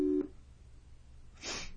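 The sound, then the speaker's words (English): A brief electronic ringing tone sounds at the start of an outgoing call placed through a phone app, then fades into quiet line hiss before a short burst of crackly noise near the end. No one speaks. “It's ringing, my dudes.”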